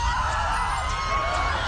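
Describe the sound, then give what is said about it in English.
A crowd yelling all at once while throwing shiny objects, a dense, steady roar of overlapping shouts and raised voices that holds at a constant loudness throughout, with no single voice standing out. “Please stop yelling and throwing shiny objects!”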